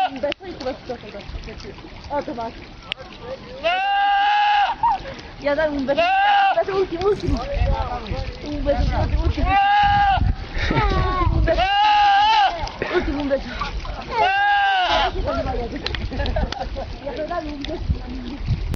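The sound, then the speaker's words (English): A goat lets out a series of loud, drawn-out screams that sound strikingly like a yelling man, about five or six cries a couple of seconds apart over rough outdoor background noise. “Animal screaming noises, like goats that yell like humans.”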